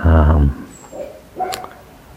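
Dogs next door bark: one loud, deep bark, followed by a couple of fainter, higher yelps a moment later, with no one talking.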